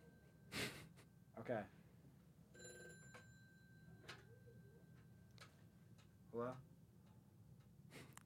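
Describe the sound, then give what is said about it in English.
A phone rings for an incoming call in a few short, separated bursts over a faint steady electronic tone, with quiet voice sounds and background noise between the rings. “Oh, we have a caller.”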